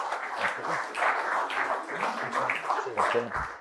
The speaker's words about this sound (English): I wish everyone to give him a round of applause.